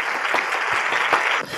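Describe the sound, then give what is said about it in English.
A short burst of steady applause, many hands clapping in a dense, continuous patter at an even volume, with no voices. “Please clap.”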